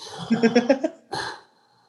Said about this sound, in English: I just love the Zoom just dead air. No, we're just heavily breathing. Breath stinks.